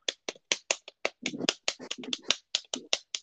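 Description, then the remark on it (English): Keys are slapped one at a time with the fingers on a computer keyboard, a string of sharp, crisp clacks at a slow, uneven pace, some landing with a heavier, duller thump. No voices. “I slap the keyboard with my fingers, but I do it really slowly.”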